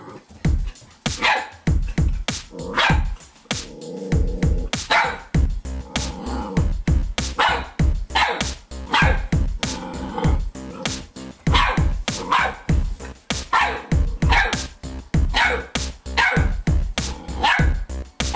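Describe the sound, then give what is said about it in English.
A pet dog named Nacho Page barks repeatedly and loudly, a long run of sharp, rapid barks in quick bursts with brief pauses, some yips mixed in, and no talking. “Okay, I am running a little bit behind today, so here to fill in honor of this being a dog movie, is my dog and potential mascot of Purely Nostalgia, Nacho Page.”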